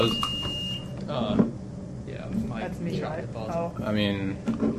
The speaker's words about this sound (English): Yeah, sometimes, like, this is a really crappy buzzer. So there's two that don't work. And then there's this one that don't really work all that well